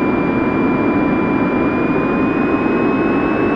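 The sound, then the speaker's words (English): A steady, loud roar of a jet airliner's engines, a dense rushing drone with a thin high whine running through it, constant, with no voices. “we have emotional support miniature horse is seen sitting on a passenger's lap on flight to Nebraska.”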